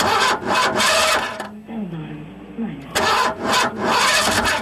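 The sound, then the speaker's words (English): A car stuck in the middle of a street, said to have been filled with bad gas, cranks over and over in rough, rhythmic bursts without catching, pausing briefly in the middle while a muffled voice is heard, then grinding again. “I'm stuck in the middle of the street right now. Listen to my car.”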